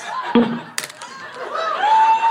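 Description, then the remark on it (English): A brief burst of crowd cheering sound effect, loud, with overlapping shouts and whoops swelling together for a couple of seconds. “Well, hold on, before you cheer.”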